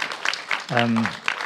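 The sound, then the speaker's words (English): An audience claps in a steady, dense patter across the whole clip, and a single voice rises briefly over the applause midway through. “You were right to clap.”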